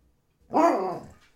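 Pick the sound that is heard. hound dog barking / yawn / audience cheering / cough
hound dog barking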